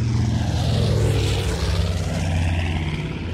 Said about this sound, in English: The morning of Saturday, July 18, 1945, a United States Army Air Force's B-25 Mitchell was flying from Bedford Army Airfield in Massachusetts to New Jersey's Newark Airport.